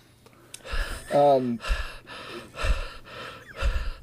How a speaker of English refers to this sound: That's your uncle breathing. No, it's not.